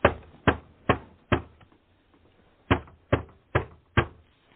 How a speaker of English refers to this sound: Following day, at 221 Baker Street in London, Dr. John Watson is brewing tea, while Sherlock Holmes sits in his easy chair smoking his calabash, and a series of knocks on the door are heard.